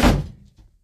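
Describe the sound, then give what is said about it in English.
A single solid thunk of a door knocking against its frame, a loud low thud that fades quickly with a faint rattle. No voices. “This door has to stay open, honey.”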